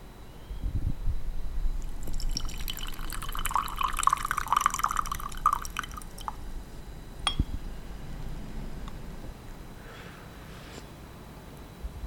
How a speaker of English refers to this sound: poured out the tea and we commented on it.